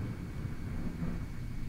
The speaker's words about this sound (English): And that is Thunder, ladies and Thunderbolt gentlemen.